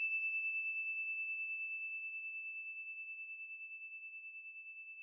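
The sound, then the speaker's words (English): A single bell chime rings out alone as one pure, high, steady tone with a gentle wavering shimmer, slowly fading over several seconds without dying away completely. “Here comes the bell.”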